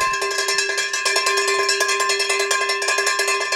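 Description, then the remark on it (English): A bright metallic bell clangs over and over in quick, steady succession, its ringing tones sustaining loudly throughout with no voices present. “That is the bell.”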